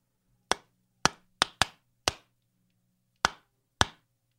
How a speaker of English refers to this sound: Yeah, man, it's a very it's the number one secret knock, man.